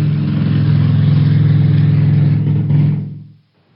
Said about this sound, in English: Okay, that was an airplane.